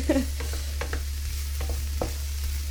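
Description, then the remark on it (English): Chorizo and pancetta frying in a pan, a steady crackling sizzle with a few sharp scraping clicks as the meat is stirred with a wooden utensil, over a constant low hum. “You can hear that's nicely cooking away now.”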